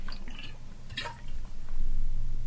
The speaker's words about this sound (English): sorry, I need to get a drink of water.